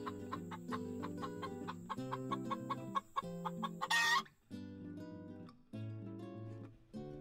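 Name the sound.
chickens clucking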